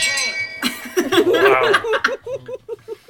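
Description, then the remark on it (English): A bright shame bell rings out for about half a second, its tone hanging briefly before voices break in, then several people laugh in rhythmic bursts. “And I got the first episode that had the Shame Bell in it.”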